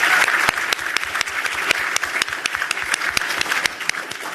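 A round of applause from an audience for a presenter who has just gone through data quickly: many hands clapping in a dense, steady patter, with sharper individual claps popping out irregularly, fairly loud throughout.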